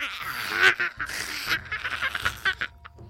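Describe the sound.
A voice imitates the harsh, raspy croaking from a stone gargoyle's throat, a run of rough guttural bursts with uneven rhythm, loud at first and then stuttering into shorter choppy croaks.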